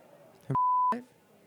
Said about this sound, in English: We should probably beep that.